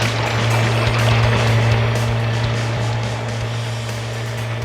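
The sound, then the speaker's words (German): A racing motorboat's engine drones steadily with a low, humming pitch over rushing water as the boat turns into a small bay, easing off and growing slightly quieter toward the end as the boatman throttles the engine down. “Der Bootsmann drosselte den Motor.”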